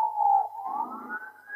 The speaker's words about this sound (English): And it's ironic, isn't it, that there's a police car going past you right now. Yeah. The irony of this conversation and that happening.